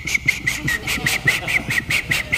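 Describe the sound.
A preacher during a sermon whistles an imitation of morning birdsong: a quick, steady run of about a dozen bright, high chirps, evenly spaced and fairly loud, with a faint murmur of voices underneath.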